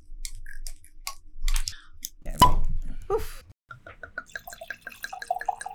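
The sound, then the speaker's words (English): Squeaky cork twisting gives way to a sharp pop as the cork is pulled from a bottle of 2016 Palma Carolo Malbec from Polenta Estate, Argentina, followed by a steady run of rhythmic glugging as the wine pours into a glass, gurgling and bubbling in quick, regular bursts. “But I think more importantly, let me pull the cork out and then we can have a taste.”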